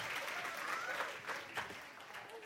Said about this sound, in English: One more round of applause for these precious kids. Amazing. Good job, guys.